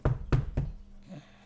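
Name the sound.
knocking on wood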